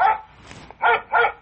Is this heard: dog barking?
yes